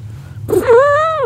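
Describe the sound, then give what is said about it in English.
A single drawn-out meow from a female cat being held and squeezed, rising and then slowly falling in pitch, sounding strained, over a low steady background hum with no one talking. “The cat's not going to talk. She'll make a noise.”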